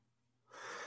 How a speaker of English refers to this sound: Ooh. I'm going to sneeze.